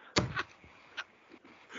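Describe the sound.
A person's voice mimics a parrot, letting out one loud, harsh, raspy squawk followed by a couple of shorter, fainter screechy calls.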